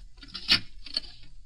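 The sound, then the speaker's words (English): A coffee percolator bubbles and gurgles in soft bursts as the coffee boils, with two louder sputtering pops about half a second apart over a low, steady simmer. No one speaks. “Oh, your coffee's boiling.”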